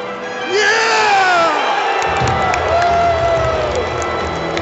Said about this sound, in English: he is the one you can hear throughout the entire arena cheering.